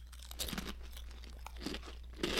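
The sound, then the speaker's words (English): Loud, crisp crunching of Zapp's New Orleans kettle-style Voodoo potato chips from a party-size bag being chewed, a run of sharp irregular bursts over about two seconds with a steady low hum underneath and no talking. “So New Orleans kettle style Voodoo Chips.”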